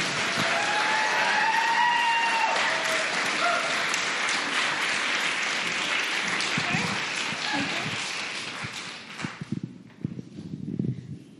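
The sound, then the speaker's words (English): An audience at a storytelling event applauds loudly for the next storyteller with dense, rapid clapping for several seconds, then fades out as a few scattered claps and low voices remain. “So please clap your hands in a rapid fashion for”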